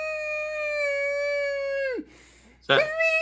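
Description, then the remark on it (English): A person lets out a long, steady, high-pitched vocal wail like a young horse's whinny. It falls away abruptly, and after a brief silence a second loud cry bursts out. “That sounds like a baby horse or something.”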